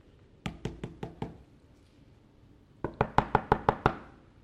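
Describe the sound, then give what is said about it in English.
Heavy knocking on a door: a burst of about five firm raps, a pause, then a louder, faster round of roughly seven bangs, insistent with no voices. “There's somebody banging on the door.”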